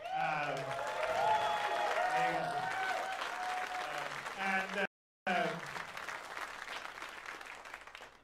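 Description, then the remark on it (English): An audience breaks into sustained applause for the CG Bot team, a partner studio building spaceships, mixed with cheering and voices, a dense steady clatter of clapping that drops out abruptly for a moment before carrying on. “Take a virtual round of applause.”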